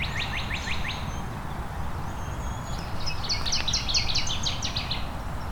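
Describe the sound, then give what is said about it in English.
A northern waterthrush, a type of warbler, sings a loud, emphatic series of rapid, repeated chirping notes, with a second burst of the song following a short pause over steady low background noise. “And there's our northern water thrush, which is a type of warbler, not a type of thrush.”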